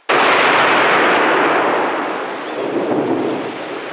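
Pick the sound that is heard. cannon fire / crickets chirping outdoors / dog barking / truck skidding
cannon fire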